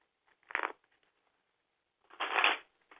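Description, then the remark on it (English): A deck of cards being shuffled in two quick bursts, a short riffle followed by a longer, louder one about two seconds later, with no talking. “I am going to shuffle our cards here for a moment.”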